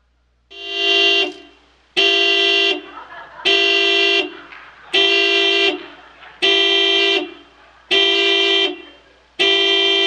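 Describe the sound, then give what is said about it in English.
A car alarm in a busy parking lot honks over and over in a steady rhythm, seven loud blasts of nearly a second each with short gaps between, without any talking. “I had no idea why this alarm was going off.”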